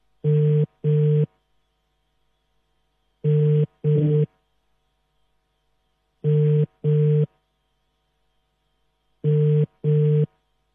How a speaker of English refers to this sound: you're not picking up your phone. And I wanted to find out how you're celebrating your birthday today, Father.